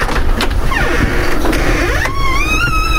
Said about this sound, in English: Screechy door.